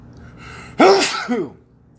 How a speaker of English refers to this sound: Pardon me. Tis the season for sneezing.